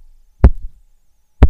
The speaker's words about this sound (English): Ow! That hurts. That is me banging my head into the microphone again.